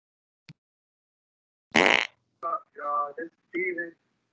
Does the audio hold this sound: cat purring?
no